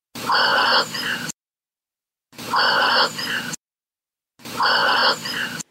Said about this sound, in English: This is her dog breathing, and you can hear a very breathy, "I love you."